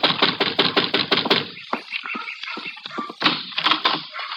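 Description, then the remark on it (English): A quick, even series of sharp knocks on the door of Shady Rest, a shabby rooming house, fairly loud, followed by a looser scatter of softer taps and then a second brief burst of knocking. “And you better knock again.”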